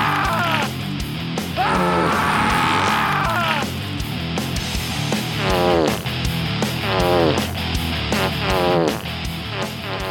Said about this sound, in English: all the best in scream fart EDM, like Zeus's butthole. Zeus's butthole!